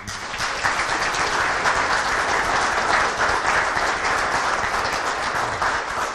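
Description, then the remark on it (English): An audience at Christchurch applauds together to welcome a visiting pastor, a dense, steady wash of many hands clapping at an even loudness for about six seconds, with no talking over it. “And so, no further ado, let's give I think it's quite appropriate, we can clap in church, to give a warm Christchurch welcome”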